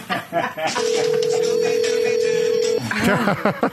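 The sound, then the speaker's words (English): A cell phone ringtone from an incoming spam call sounds as one steady, fairly loud tone held for about two seconds, with muffled voices chattering around it before and after. “I need to turn off my sound. It's got Scooby-Doo ringtone.”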